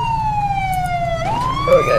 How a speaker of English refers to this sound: Can we get a siren check? It's that SUV unit over there. Someone left it, need a siren check on the unknown vehicle sitting in the middle of the road.